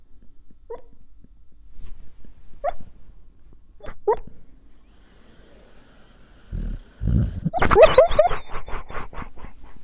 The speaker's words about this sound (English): It's actually the best when dogs bark in their sleep.